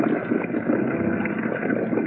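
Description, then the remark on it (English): A chartered power launch's engine drones steadily on a calm sea, a dense, even rumble with a rough, churning texture that holds at the same loudness throughout, with no voices. “to charter a power launch and hire the services of a diver.”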